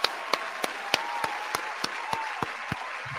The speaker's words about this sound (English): round of applause for Victor Perry one time, man